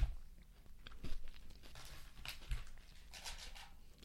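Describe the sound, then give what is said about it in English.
Crunching as someone bites into a crisp Crunch Bar chocolate candy bar with crunchy rice pieces, followed by steady chewing with bursts of brittle crackling, no talking. “It's a Crunch Bar in the best way. Sweet, creamy, melt in your mouth. A lot of crunchy rice pieces, which is nice.”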